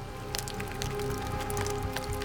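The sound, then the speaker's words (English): Raindrops plop and tap at a grotto as rain begins to fall, an irregular scatter of sharp little hits over a steady low hum, at a moderate, even level throughout with no voices. “A drop of rain plopped between Kuna's eyes.”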